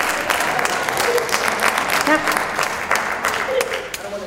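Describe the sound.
An audience applauds steadily, a dense, loud wash of many hands clapping at once, with a few faint voices or whoops rising through it before it eases slightly at the end.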